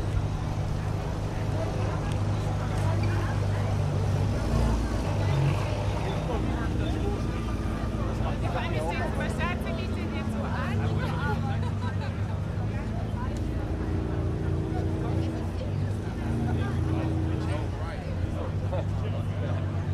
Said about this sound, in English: and it just sounds great as I start them all up. Hopefully you can hear enough of this over me. I'll shut up and let you hear some engine notes.